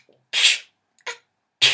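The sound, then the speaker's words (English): Three loud, breathy sneezes in quick succession from a sick boy, the middle one shorter and softer, with no talking around them. “I keep sneezing as well.”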